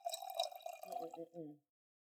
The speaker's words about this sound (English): Okie dokie, let's pour and taste. Oh, here we go. Thank you. Here's yours.